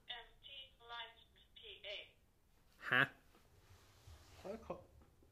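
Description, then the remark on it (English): A phone rings once with a short, bright electronic tone, standing out clearly over muffled voices that murmur before and after it. “That thing's ringing off the charts tonight, man.”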